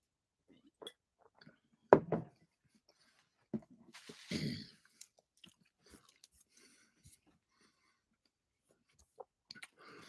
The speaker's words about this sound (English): In some respects, hold on, I got to chew this.